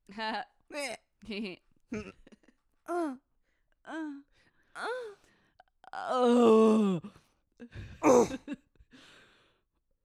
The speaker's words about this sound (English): And the bubbles from this like sparkling wine are not helping the belching situation. Yeah, the burps are intense with this. I'm not mad about it. They come on quick.